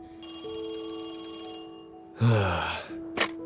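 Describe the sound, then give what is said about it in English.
A telephone rings with a steady, bright metallic tone lasting a couple of seconds, followed by a sharp breathy rush of sound and a brief high-pitched burst near the end. “Then, on December 20th, only 8 days after the murders, yet another phone call shocked the sheriff.”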